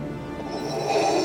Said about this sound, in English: There is a sheep here. I'm in the process I of locating it. The sheep just won't leave.